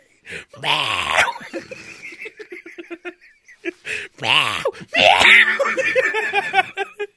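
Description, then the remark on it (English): In a joke video being played, a man yowls and yells loudly into an Xbox-style microphone, imitating a cat, in several harsh, strained bursts with rising and falling pitch and short gaps between them. “It's not a cat. It's just you yelling.”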